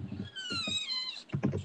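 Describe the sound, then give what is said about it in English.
A cat lets out one drawn-out, high meow, with soft thumps and rustling bumps just before and after it. “Fuck off, cat.”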